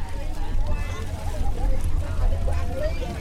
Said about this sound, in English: And we're putt-putting down toward a bunch of lights in the distance, just south of Kantō, the major city on the Mekong River in the Mekong Delta region. And you start hearing a lot of shouting and activity from the boats.